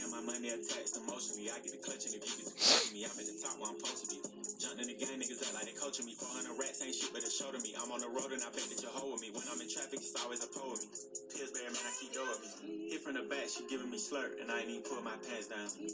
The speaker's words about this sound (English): Echo, stop playing music. See how that's enjoyable?